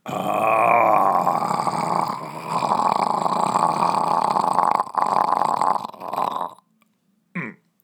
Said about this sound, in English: The noise of a lion.